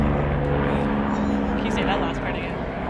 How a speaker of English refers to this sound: So to repeat myself because of the plane that flew over,